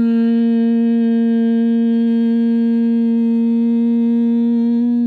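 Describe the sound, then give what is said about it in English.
A voice hums one steady, low, buzzing note without a break for about five seconds while breathing out during a breathing exercise, loud and unwavering, like the drone of a bumblebee. “The humming sounds like a bumblebee.”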